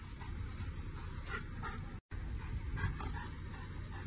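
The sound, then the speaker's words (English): A puppy imitating a police officer doing push-ups whimpers and lets out small yips in a steady run of short, repeated sounds over constant background noise, with a brief break of silence partway through. “Because the puppy's just imitating him as he's doing push-ups.”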